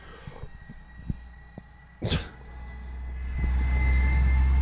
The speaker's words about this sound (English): You guys hear that shit? It's a fucking garbage truck.